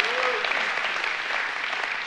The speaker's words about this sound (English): And if you know that, give him a hand clap and say, yeah, I know, I am favored.